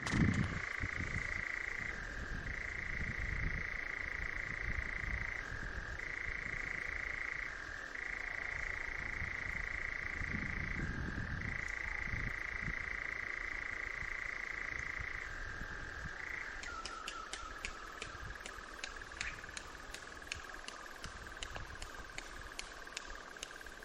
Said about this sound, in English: He writes he was lucky enough to record a nightjar, including its wing claps, in Northumberland this June. And he sent the recording in and hopes we enjoy it.